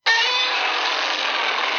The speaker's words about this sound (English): I do have here several different Godzilla screams, I think.